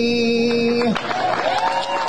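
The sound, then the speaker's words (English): A held sung note breaks off and gives way to a loud, dense swell of crowd cheering and scattered applause for Dr. Fauci that continues steadily to the end. “Why do they cheer this person?”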